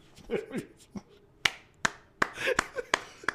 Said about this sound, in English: I gotta give you that one. That's an applause from me personally.